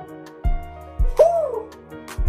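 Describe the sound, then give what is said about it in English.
A person imitates an owl with a single drawn-out, gliding "hoo" hoot, clear, over a steady low background with a few deep thumps. “Turn into an owl.”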